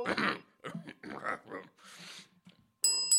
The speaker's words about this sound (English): I'm going to ring this bell here.